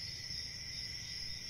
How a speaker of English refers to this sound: It's like crickets.